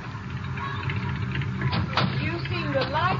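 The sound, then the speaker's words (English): A car engine rumbles steadily with a low, throaty hum, like a vehicle pulling up and idling, while faint voices murmur over it toward the end. “There's a car coming.”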